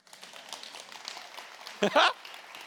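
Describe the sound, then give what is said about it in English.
An audience at a sermon applauds with a steady wash of scattered clapping, moderately loud throughout, and a brief voiced cheer bursts out near the end before the clapping carries on. “Now you can clap.”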